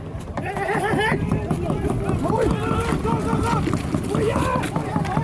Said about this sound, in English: You can hear the screeches when they come to shore and when they get caught. Those tiny squeaks you can hear are the whales calling out.